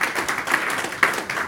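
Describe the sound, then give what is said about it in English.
A church audience claps together during a sermon in a dense, steady patter of many hands, loud and sustained for a second and a half, with a few sharper claps standing out near the end. “It's a bloodline that, if you are clapping, you better clap where.”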